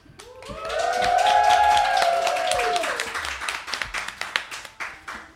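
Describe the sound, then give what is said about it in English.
A studio audience at a live show at the Pleasure Chest on the Upper East Side in New York City applauds with dense, steady clapping, joined early by loud high whoops and cheers. The cheering fades and the applause thins to scattered individual claps before ending. “Thank you for that applause, studio audience.”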